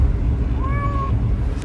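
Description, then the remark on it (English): A single short, clear meow from a cat in a crate rises out of a steady low rumble of road noise inside a car driving home, with no talking. “You can hear her now, I think.”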